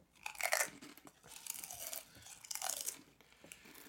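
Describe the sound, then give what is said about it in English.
Crisp crunching of someone chewing Pringles savoury snack crisps, a few loud bursts of crackly munching repeating over several seconds with no talking. “I'm just having a Pringle.”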